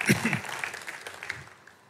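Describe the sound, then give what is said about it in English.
An audience cheers and claps to welcome members who joined between 2006 and 2020: a loud burst of whoops over dense applause at the start, then steady clapping that gradually fades over two seconds. “If you joined between 2006, when we, from the moment we opened the building here, through until 2020, will you also give me a big wave and a big cheer? Come on, let's give them a big welcome.”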